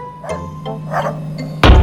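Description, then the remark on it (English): A few short dog barks, then a sudden loud, heavy thud as a dog jumps from the street and lands hard on a car roof, with a deep booming impact at the end. “To verify, your report is that the dog jumped from the street onto the roof of your car.”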